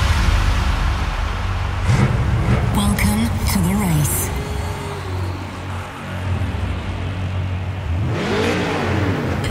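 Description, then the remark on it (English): Race car engines rev and whine over a loud, dense music bed of a Formula One-inspired festival dance track, pitch sweeping up and down in bursts, with a brief vocal-like layer mixed into the track. “Together, we bring maximum power to this Formula One-inspired banger.”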